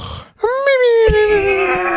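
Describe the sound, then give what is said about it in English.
A voice imitates a cartoon-like snoring breathing pattern: a short breathy intake, then one long, loud, whiny exhale that glides slowly downward in pitch. “Pablo and Catch both have a hilarious breathing pattern when they snore, and it's like a cartoon.”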